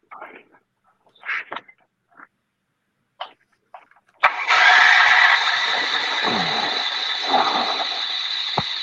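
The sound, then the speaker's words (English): A few short hissing bursts and clicks, then a small generator engine, cranked with Seafoam sprayed in, catches abruptly and roars into a loud, steady, buzzing run that holds to the end. “All right, spray a little seafoam in there and get it cranked.”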